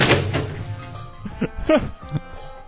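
A chair is thrown, landing with a heavy thud and clatter, followed by a few scattered knocks and thumps, with faint voices murmuring underneath; someone is throwing chairs.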